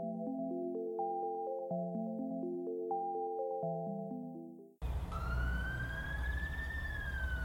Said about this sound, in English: Did you hear that? Hear what? The siren. At this point, I'd have to ask which one.